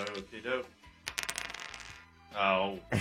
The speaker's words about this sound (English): You need to roll the dice to determine your handicap.